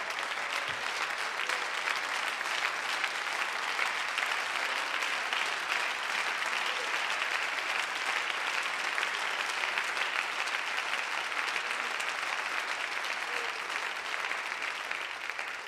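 A standing audience at a Wednesday night church service claps to the Lord steadily for the whole stretch, a dense, crackling wash of many hands with no break and no one speaking over it.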